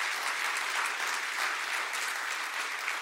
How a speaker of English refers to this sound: To get us to that 99.7% of the amount pledged is incredible. It's kind of shocking, honestly. And I want to acknowledge, yeah, we can clap for that.